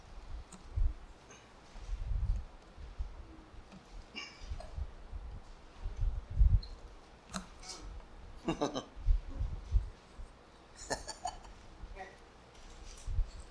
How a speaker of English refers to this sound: I love to hear the pages turning. I'm going to be very patient this morning with the scriptures, okay? So everybody can get to them.